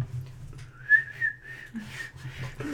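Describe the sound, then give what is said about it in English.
Someone whistles a short, sweet melodic tune in a thin, high tone, the pitch gliding and wavering for a couple of seconds, over a low background hum. “Wow, that whistling is so high-pitched that only other dogs can hear it.”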